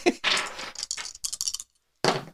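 Clatter of three dice rattling and tumbling across a hard surface in a quick run of bursts, a short pause, then one final brief skitter.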